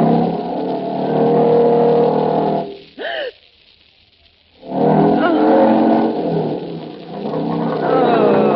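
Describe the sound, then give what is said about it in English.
A loud motorcycle engine, ridden along a wire by the performer Lancaster, revs and drones, drops away briefly to near silence after a rising whine, then roars back up and keeps running steadily to the end. “Watch him ride that motorcycle on nothing but a wire.”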